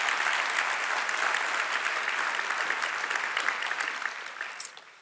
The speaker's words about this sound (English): So can you guys lift up some applause and some praise for them?